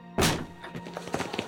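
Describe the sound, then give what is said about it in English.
Heavy chapel doors burst open as two men come through during a funeral service, with a single loud, booming thunk that rings briefly, followed by softer scattered knocks and shuffling. “Two men burst through the chapel's doors.”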